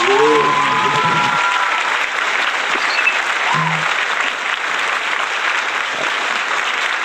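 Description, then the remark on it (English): Steady, dense applause from a crowd for a new trick fills the whole stretch at a loud, even level, with a voice briefly calling out over it at the very start. “Give him a round of applause for the new trick.”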